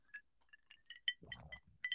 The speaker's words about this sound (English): It's got a, you know, the ice clinking around the glass. That's a pleasant sound in my mind.